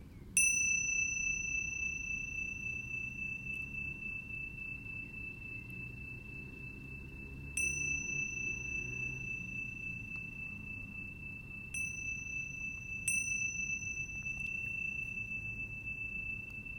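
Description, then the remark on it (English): A meditation bell rings four times during a class, each strike a clear sustained tone that lingers and slowly fades, with pauses of several seconds between strikes over a soft low background hum. “And noticing the sound of the bell moving through time.”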